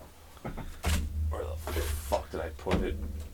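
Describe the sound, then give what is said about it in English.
Rummaging for a dry erase marker, with clinks and clatters of small objects being shuffled around, several loud bursts rising and falling irregularly over a low steady hum. “If you're hearing a lot of clinking right now, it's because I'm trying to find the dry erase marker.”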